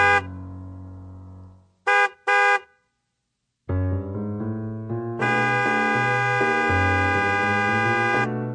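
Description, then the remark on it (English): A car horn blares in a long held note, then gives two quick sharp honks, followed by a loud, sustained honking that shifts in pitch and holds for several seconds. No voices. “Got to use Twitter, cause I can't honk the hell out of my horn.”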